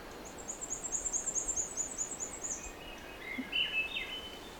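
Two Swainson's warblers sing in turn, one with a high, rapid trill and then another answering lower and briefly, both fairly faint over a steady outdoor hiss.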